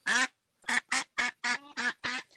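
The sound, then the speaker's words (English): An angry duck quacks loudly and insistently as her egg is being collected, a rapid series of about eight harsh, nasal quacks in quick succession with no one speaking. “I know you're mad.”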